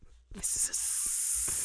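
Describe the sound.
A voice imitates a snake's hiss: a loud, sustained airy hiss that starts abruptly after a brief breathy onset and holds steady for over a second.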